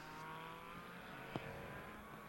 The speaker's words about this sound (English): … saying, great to hear race cars in action again. Isn't it?